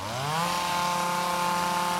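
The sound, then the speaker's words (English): A neighbor's small gas leaf blower, belonging to McDougal, revs up and then holds a steady, loud droning whine, running continuously throughout with no voices. “Damn him and his leaf blower.”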